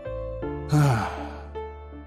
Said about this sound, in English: Exhale through your mouth so that you make a whoosh sound.